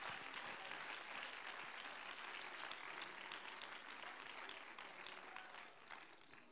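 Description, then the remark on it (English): An audience claps hands to God in a dense, steady wash of applause, many hands overlapping with no clear rhythm, staying loud throughout and easing slightly toward the end. “Come on, clap your hands to him right now.”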